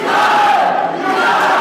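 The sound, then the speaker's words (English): A large crowd of hundreds at a town meeting in Windham roars with sustained booing of town leaders and shouting, chanting "resign", a dense, loud wall of many voices that holds steady without pause. “Hundreds piled into a town meeting earlier this month, booing town leaders and chanting, resign.”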